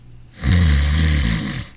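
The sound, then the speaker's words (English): A man snores in a hospital the night before an operation: a single long, loud snore rumbles low and harsh, with a rattling, throaty texture that swells quickly and holds steady for over a second before tapering off. No one speaks. “Listen. Oh, it's like being married to a steam shovel nurse.”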